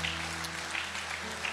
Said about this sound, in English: Can I ask, we just give them a hand of applause? This is a measure of thanks.